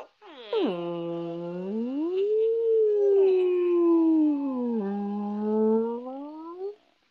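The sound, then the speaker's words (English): Human voices imitate whale calls with long, wavering moans that slide down, swell upward and dip again, sustained for several seconds, fairly loud, with no ordinary talk. “Whale noises are fun to make.”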